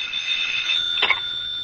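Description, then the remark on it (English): A telephone rings with a steady, shrill electronic tone that holds throughout, briefly swelling into a brighter burst midway. No one speaks. “And then suddenly the phone was ringing.”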